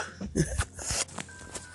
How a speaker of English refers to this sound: oh, excuse me, that cough caught me out of nowhere.